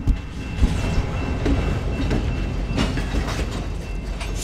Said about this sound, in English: And here comes a really big and slow-moving freight train.